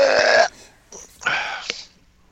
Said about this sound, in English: I'm going to start burping beer. Get the drunky reflux going? Drunky reflux going on? Yeah, I think I had too much now.